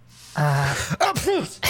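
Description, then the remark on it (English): A woman sneezes as she walks away: a drawn-out voiced inhale builds into a sharp, breathy burst, followed by a brief wavering vocal trail. The sneeze is fairly loud, with no talking. “She sneezes as she walks away.”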